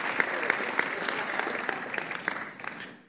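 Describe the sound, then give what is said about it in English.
Church audience applause for visiting pastors of Poimen Church: many hands clapping steadily in a dense, crackling wash with no voices over it, holding fairly even before tapering off near the end. “Clap for them.”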